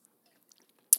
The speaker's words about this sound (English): But, sorry, that was a quick little drinky drink. Little Driz Naive, you feel me? I had to get some of that water real quick. Because my throat was getting a little dry.